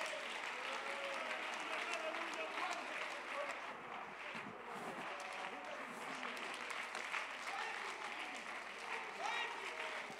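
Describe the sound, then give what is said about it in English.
An audience claps steadily for the whole stretch, a dense, crackling wash of many hands at an even, fairly loud level, with indistinct voices mixed into the applause. “Come on, I appreciate the hand claps, but I think there ought to be a voice that's getting lifted in this room right now.”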